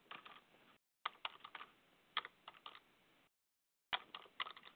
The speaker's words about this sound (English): I'm typing it in for those of you that are on the computer with us.